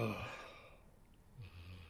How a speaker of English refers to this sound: Is your dog snoring? My dog is snoring. Do I need to wake her up?